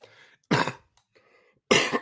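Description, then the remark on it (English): Two loud, harsh coughs, about a second apart, with faint breathy throat noises in between. “I brought cough drops today, everybody. So I think we should be good. Just that one stuck up on me a little bit.”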